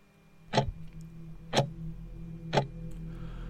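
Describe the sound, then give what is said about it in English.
A sunflower-shaped wall clock in an office ticks three times at a slow, steady one-second pace at 12:30 at night, each tick a crisp click over a faint low hum in an otherwise quiet office. “Clock in the shape of a sunflower on the office wall shows 12:30 midnight.”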